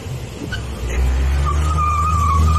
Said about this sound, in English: While it sounds like the car is screeching away, it's not going that fast. And as a matter of fact, it stops right in front of the store.